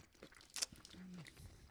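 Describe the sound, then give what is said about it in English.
Quiet chewing on an Australian Twix chocolate caramel bar with salt and the caramel in a ring: one sharp crunchy bite, then soft moist mastication and a brief low hum from the chewer. “Oh, it's not as crunchy. It's like a chewy Twix.”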